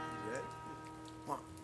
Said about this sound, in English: And some rain sounds. That's where they recorded that rain. Put it. Yeah, it was raining when they recorded that shit. Really? I was just reading that, yeah. Oh, and shit. They recorded it in stereo. They set up two mics and hit left and right